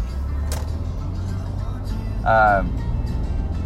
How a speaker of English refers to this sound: So in the week, so each week, got a little traffic here.